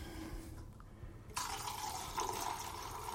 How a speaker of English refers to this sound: water in there now to stop the developing.